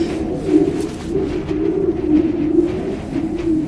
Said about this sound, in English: What is that? The grinding noise? It's an ice disk that formed on the lake. This spins due to a current, and the current is part of what I'm here to study.